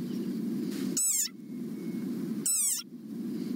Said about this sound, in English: Like this desert rain frog. Squeaking viral sensation. Million hits and counting. It sounds like a dog toy. But actually, this is the sonorous war cry of a very angry frog.